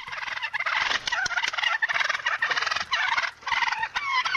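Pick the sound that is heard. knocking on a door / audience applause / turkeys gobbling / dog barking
turkeys gobbling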